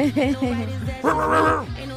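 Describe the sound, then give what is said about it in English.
A person loudly imitates a dog barking, giving a few quick, yappy barks followed by one longer, drawn-out bark-howl. “That's going to be my new ad-lib, just barking.”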